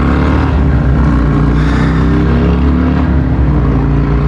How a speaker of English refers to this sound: Oh, it's a bunch of jerks and motorcycles.